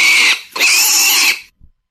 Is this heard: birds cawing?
no